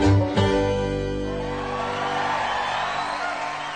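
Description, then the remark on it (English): A loud crowd at the Charleston Music Hall erupts in cheers and whoops over a final sustained musical note, the noisy roar of applause swelling and holding steady as the music fades out. “Sounds like a great crowd there at the Charleston Music Hall.”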